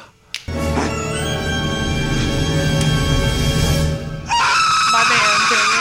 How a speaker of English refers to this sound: That may be the best scream of any movie of all time, making Daniel Stern the best screamer of all time.